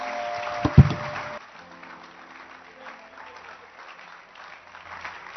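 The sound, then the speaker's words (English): A church audience applauds girls who read a Bible passage, a dense burst of clapping with a dull thump early on, then the applause drops to a quieter, steady patter that continues to the end. “So, clap your hands for them.”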